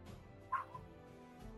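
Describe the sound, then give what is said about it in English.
A dog gives a short, sharp bark followed by a softer second yelp over a low, steady background hum. “Woof, woof.”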